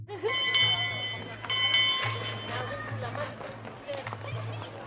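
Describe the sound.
A school bell at Gospel Oak Primary School in North London rings out with bright, sustained clangs, two strong strikes followed by fainter ringing, over a busy background of children's voices and footsteps and a low steady hum.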